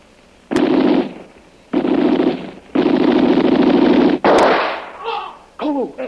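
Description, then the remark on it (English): Two sharp gunshot cracks ring out a few seconds apart over loud, sustained rushing noise, and a wavering, high-pitched cry follows, a man screaming after the shots. “I hear a man scream after you shoot.”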